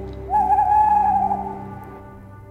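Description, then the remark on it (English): A single drawn-out owl hoot, clear, sustained for about a second before fading over a low background hum, with no one speaking; an ident sting for the Great Big Owl network. “The following podcast is a member of the Great Big Owl family.”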